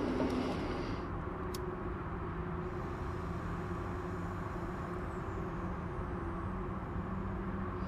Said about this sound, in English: City Lights Bookstore, San Francisco. With some traffic noise which may punctuate the poems.